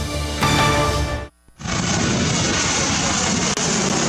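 A loud airplane engine drones with a tonal hum, cuts out for a moment, then returns as a steady, close, full roar that continues to the end. No one speaks.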